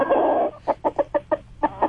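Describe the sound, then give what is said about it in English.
A rooster's drawn-out crow trails off, followed by a quick run of about seven sharp, evenly spaced clucks, fairly loud but thin and narrow, as if over a telephone line; a caller to the radio call-in show Swap Shop offers the rooster for sale. “I got a rooster for sale.”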